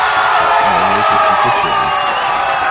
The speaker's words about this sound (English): There's no real people cheering. Thank you. Thank you, everybody. It's all a lie.